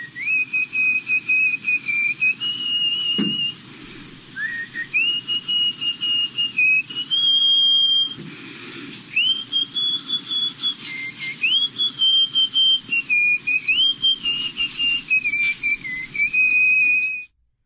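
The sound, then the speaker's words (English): A loud, sustained nose whistle, the record-breaking loudest nose whistle at 44.1 decibels, holding a shrill high tone for nearly twenty seconds, wavering and sliding between pitches with brief breaks, with a soft breathy rumble underneath and no talking. “You want to hear the record-breaking nose whistle at 44.1 decibels?”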